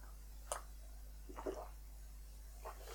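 Three short, wet slurping sips of water, spaced about a second apart, fairly quiet, with no talking.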